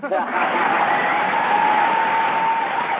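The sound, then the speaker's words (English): A crowd sound effect of booing, a dense, sustained wash of many voices holding a low jeering tone, steady and fairly loud for about three seconds with no talk over it. “You hit the boo meter instead of the clap meter.”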